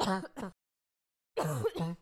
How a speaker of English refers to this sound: I just coughed onto my hand. Well, it was that or the microphone.